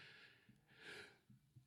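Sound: sneeze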